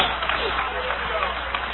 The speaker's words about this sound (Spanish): Dale un aplauso de alabanza al Cordero de Dios.